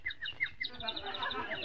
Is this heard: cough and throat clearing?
no